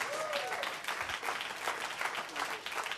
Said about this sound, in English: If you are clapping, clap nicely, please, everybody.